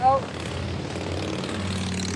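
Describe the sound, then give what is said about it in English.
A motorbike passes by, its engine a steady, low, humming drone that holds for a couple of seconds. A brief voice sounds at the very start. “Doesn't he know I'm recording a podcast, Mr. Motorbike Person?”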